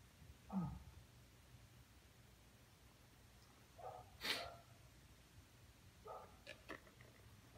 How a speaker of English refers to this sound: Now you can really hear that bark, can't you? Can hear that. Crisp, was it?